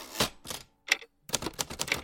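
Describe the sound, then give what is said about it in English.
A secretary types on a typewriter, keys clacking in quick, uneven bursts, with a short pause in the middle before a rapid flurry of taps resumes, crisp with no voices. “She just sat there, tap, tap, tapping away.”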